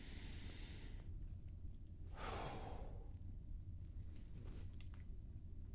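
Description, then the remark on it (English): A long, deep breath drawn in and then slowly released, audible as a soft airy rush with a low steady hum beneath and no talking. “That simple breathing motion, breathing in, also illustrates what happens with peace.”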